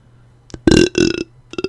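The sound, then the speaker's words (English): A loud burp in two long, croaking pushes, with a few short clicks and smacks before and after it. Nothing else is audible in the quiet. “Hey, hold for burp.”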